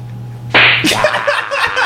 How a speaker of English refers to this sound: Hey, every time we say slap, you gotta do that. Slap.